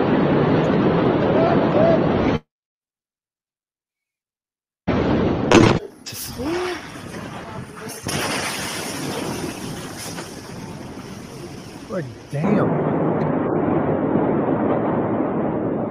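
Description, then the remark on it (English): A sudden explosion booms out of wind-buffeted outdoor video footage after a brief dropout, followed by several seconds of loud roaring, crackling rumble before the steady wind and water noise returns. “And here's the different angles of the explosion.”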